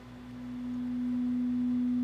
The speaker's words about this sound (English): Okay, and that's what that sounds like, two sine waves identical to each other.